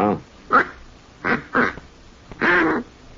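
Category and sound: tool, duck call blown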